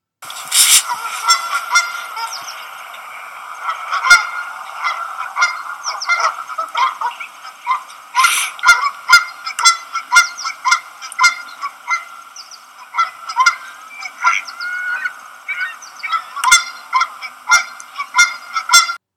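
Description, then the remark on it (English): A dozen Canada geese fly in honking loudly and land with a loud splash close to the North River bank; many overlapping, nasal calls repeat in quick, irregular bursts for the whole stretch, no talking. “A dozen Canada geese flew in, honking loudly, and landed with a loud splash close to the North River bank.”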